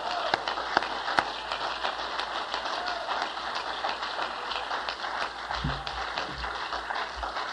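A church audience claps their hands for the Lord in a dense, steady wash of applause that holds for several seconds, with a few sharper individual claps popping out of the crowd noise. No one speaks.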